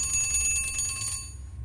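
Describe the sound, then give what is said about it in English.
An antique clock's early alarm mechanism, set by a disc at the front of the dial, rings its bell loudly, a rapid continuous metallic trill that stops after about a second and leaves a shimmering, fading ring. “Not enough to waken the dead, but certainly enough to get you up in the morning.”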